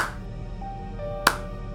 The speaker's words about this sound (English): I was doing a slow clap. Why? No one claps slowly. That is ludicrous. It's ironic.